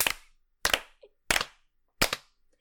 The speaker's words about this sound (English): I don't know if you all clap. Are you clapping, son? That's very good.